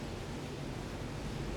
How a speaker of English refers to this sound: And be aware of the sounds of the nature, the sound of the waves, the sound of the wind brushing through the leaves.